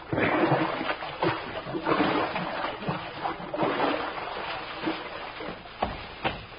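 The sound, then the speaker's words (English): Bare feet slosh and squelch through wet creek mud along a creek edge at twilight, at a steady walking pace, each step a wet splash over a continuous watery background, with no voices. “Oh, boy, it feels good to get my toes out of this mush.”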